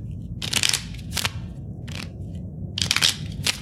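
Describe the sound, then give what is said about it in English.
Playing cards from a deck being shuffled during a card trick, in about five quick, crisp bursts of papery riffling, each a brief rustle with short pauses between, over a soft low background hum. No one speaks. “And now I'm going to set it back into the middle of the deck. With a few more shuffles.”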